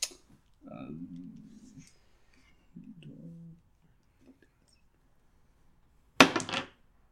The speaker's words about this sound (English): That hit the other dice. You can roll again.